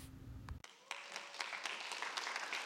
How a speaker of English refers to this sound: Oh, it's always awkward when somebody claps for you, but thank you for clapping. Oh, it's so wonderful.